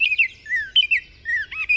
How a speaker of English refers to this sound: The Baltimore Oriole has a pretty similar song. At first, you might think there's no way to tell these two cheery, upbeat singers apart.